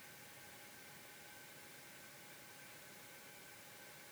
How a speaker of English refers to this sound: Can you witness the sound? That hiss of the world's worst heater in the back of this room.